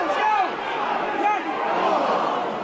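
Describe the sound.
A dense crowd roars and cheers at a hurling match in Cusack Park on Valentine's Day, as Clare beat Offaly in the first match of the National Hurling League, many voices blending into a steady, loud wash of shouting with occasional rising calls over the top.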